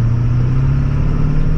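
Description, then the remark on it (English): A pickup truck towing a trailer makes a half-throttle takeoff in eco mode, running about 13 to 14 pounds of boost, its deep droning engine hum rising gradually in pitch over steady road rumble, loud with no talking. “So again, this is about a half throttle takeoff with it in eco mode.”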